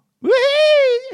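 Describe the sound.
A single drawn-out, high-pitched pig squeal, loud, rising quickly then holding steady for nearly a second before cutting off. It sounds like a human voice imitating the pig.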